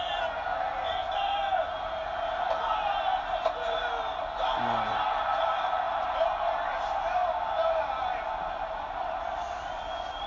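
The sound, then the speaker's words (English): A wrestling crowd cheers wildly as a wrestler pins his opponent after a diamond cutter, a steady, dense roar with whoops and yells rising out of the noise for the full length, loud throughout. “And the whole crowd is just going ape shit.”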